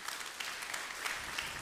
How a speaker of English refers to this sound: Yeah, clap for the word of God. Come on now.